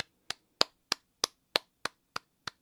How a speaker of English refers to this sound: Drum roll and a clap. A long clap.